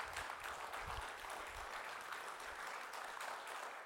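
A church audience applauding a military veteran invited up to pray: many hands clapping together in a dense, steady patter that holds evenly for the whole few seconds, with no voices over it.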